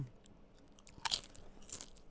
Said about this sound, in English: It's the best crunch of the three potato chips. It's kettle cooked.